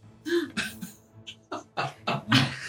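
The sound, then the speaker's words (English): A person's voice imitates the growl of the monster Graldon as it makes a multi-attack, in a series of rough, guttural bursts, fairly loud, rising to a harsher snarl at the end with no words spoken. “He is going to make a multi-attack, one against Alin and one against Vinny as he growls.”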